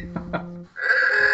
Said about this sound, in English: Oh, there's our buzzer.